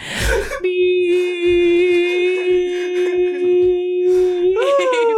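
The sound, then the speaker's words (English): A dog whimpers in one long, steady high-pitched whine that holds a single tone for several seconds, then lifts upward at the end, with a short noisy burst just before it begins. “My dog is very concerned.”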